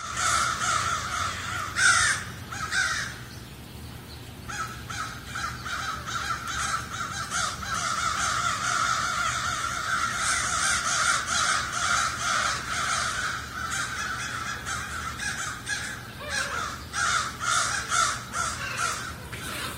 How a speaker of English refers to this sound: They remembered that lady had the dead crow. So they sounded the alarm of them screaming, doing this noise.